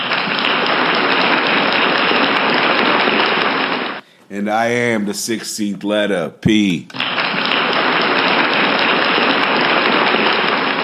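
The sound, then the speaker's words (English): A crowd claps in a dense, steady roar for about four seconds, breaks off while a man speaks a short line, then bursts back in and keeps going at full volume. “Our crowd is applause happy today.”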